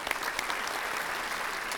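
An audience applauds steadily, a dense wash of many hands clapping at a fairly even level with no voices standing out, welcoming panelists to a discussion on the opportunities and risks of AI.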